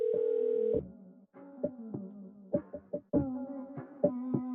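A telephone being dialed: a steady electronic tone, then a quick run of short beeps and clicks, with no one talking.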